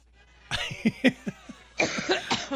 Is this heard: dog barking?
no